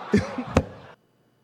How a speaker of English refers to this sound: The leg slap with the mic. He's still doing it.